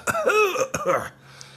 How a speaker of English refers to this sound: You know, I started taking that snake oil, and everything feels great except my nagging cough.